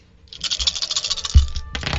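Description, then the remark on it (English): Dice clatter and roll across a hard tabletop in a quick, busy burst of clicks and rattles, fairly loud, with a sharp knock near the end as they settle; the dice are rolled for damage on a critical hit in a game. “And then that's okay, so 32 on the first hit of dice, but then it's a critical hit, so and then 20 on the second set, so 52 plus 4.”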